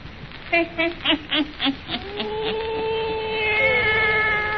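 Old Nancy's wise black cat meows: about half a dozen short, quick mews in a rhythmic run, then one long, drawn-out wavering yowl that swells toward the end, with no one talking.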